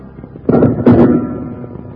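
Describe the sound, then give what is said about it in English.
Two loud gunshots crack out in quick succession, each a sharp burst with a short rumbling tail, over a low steady background hum: an angry crowd firing wildly at two lawmen, Bill Hickok and Jingles. “While Bill Hickok and Jingles soon caught up with the wagon in which the medicine show man had escaped, they found no trace of the missing crook, but the angry crowd, close on their heels, started firing wildly at the two lawmen.”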